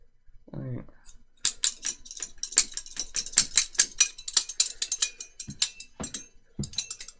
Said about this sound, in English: Kind of just sounds like you're clicking two spoons together. Is that what they do? Oh, that's how they do it.